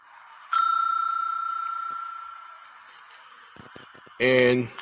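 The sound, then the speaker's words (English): A single bright bell ding rings out clearly and hangs in the air, slowly fading over a couple of seconds, before a short burst of voice sounds near the end. “And this right here, I'm gonna give myself a bell on this one.”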